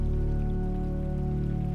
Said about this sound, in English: You walk along, making your way to the little cave behind the falls. The stone cave wall magnifies the intensity of the sounds of the waterfall.